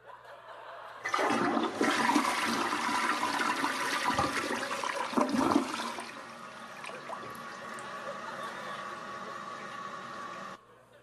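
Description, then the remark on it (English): A toilet flushes loudly with a rushing gush of water for several seconds, then settles into a quieter steady refilling hiss before cutting off. No voices are heard. “You can't flush the will of God.”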